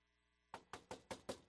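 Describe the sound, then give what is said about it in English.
Five sharp knocks on a church door in quick, even succession, fairly loud, following a moment of quiet. No one speaks. “There was a knock.”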